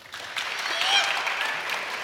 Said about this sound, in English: I like people clapping for pizza rather than clapping for disappointment. That is definitely better.